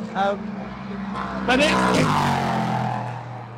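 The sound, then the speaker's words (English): GT3 and LMP3 race cars in the Road to Le Mans support race roar past on the Le Mans circuit, a loud engine whine sweeping up and fading midway through, over a steady, deep rumbling drone of more cars. “This race, I believe, is called the Road to Le Mans, which is a support race, which is GT3 cars, and then I think what's called an LMP3, which is a sort of slightly toned down LMP2 car.”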